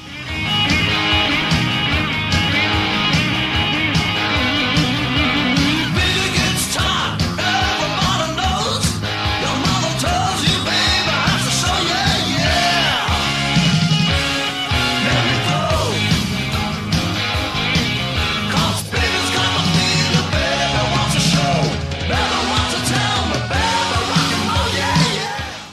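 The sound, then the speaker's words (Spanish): A loud, driving rock and roll song opens with a scream and plays steadily from start to finish, with dense guitars and drums and raw, shouted vocals cutting through the mix. “Es una canción rock and rollerísima que nomás el grito del principio y toda esa cuestión es fantástica.”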